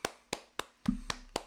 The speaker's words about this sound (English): I just want to give a round of applause to Nick Bosa.